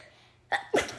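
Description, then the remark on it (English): A quick, stifled sneeze: a short breathy catch followed by a sharper burst, fairly loud, with no talking around it. “Weird sneeze, but okay.”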